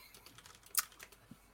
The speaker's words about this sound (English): I haven't thought that far. Typing sounds while adding to list.